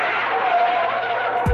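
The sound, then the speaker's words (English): A loud, sustained screech of car brakes and skidding tires, a harsh hissing squeal with a steady whining tone, ending abruptly after about a second and a half, with no voices. “And just before we continue the conversation, it's time to hit the brakes again.”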